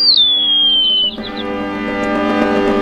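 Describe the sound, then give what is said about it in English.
A European starling (Sternus vulgaris) gives a long, clear whistle that slides downward in pitch, then breaks into a dense, buzzy chatter of rattling and squeaky notes that continues steadily to the end. “The European starling, Sternus vulgaris.”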